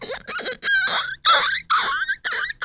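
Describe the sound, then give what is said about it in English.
A person imitates guinea pig noises: a rapid string of five or six high, squeaky, chirping bursts with short gaps between them, fairly loud and delivered without any speech. “And you know what noise the guinea pigs make?”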